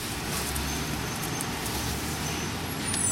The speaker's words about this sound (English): We're traveling now across 58th Street, heading east. We're in a traffic jam, not unusual this time of year.